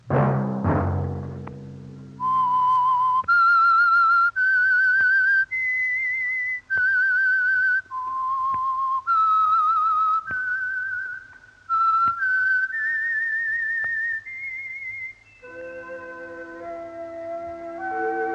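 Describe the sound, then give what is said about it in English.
A clear, solo whistled theme tune of sustained notes stepping up and down, the signature theme of a sponsored weekly Sunday-night program, followed by a short orchestral chord at the end, with a brief low rumble at the start. “Let that whistle be your signal for the Signal Oil program, The Whistler, each Sunday night at this same time”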